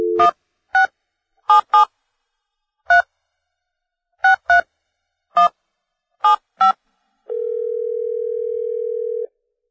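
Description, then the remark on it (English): A quick, uneven series of about ten touch-tone keypad beeps dials a phone number to call a pinball game designer, followed by a single steady electronic ring tone lasting about two seconds, clear with no voices. “let's give Ward Pemberton a call right now on the phone”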